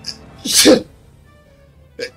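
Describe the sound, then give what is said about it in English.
A single loud sneeze bursts out with a sharp breathy rush, followed by a brief quiet pause and a short soft vocal sound afterward. “Bless you. Bless you.”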